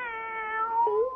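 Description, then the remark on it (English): A cat gives a single drawn-out meow, clear, its pitch dipping then rising at the end, with no other sounds around it. “My very own cat.”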